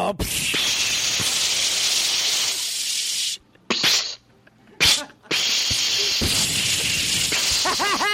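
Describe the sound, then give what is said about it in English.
Loud, sustained hissing sprays of seltzer burst from a bottle at a person in two long blasts, broken by short gaps with brief squirts and a yelp, harsh. “Why did you just spray me with seltzer?”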